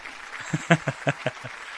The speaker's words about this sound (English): All right, they are clapping. The audience also wanted more. They're calling us out for an encore, but you know we always got to leave the people wanting more.